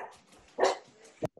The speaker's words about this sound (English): Somebody's dog is out.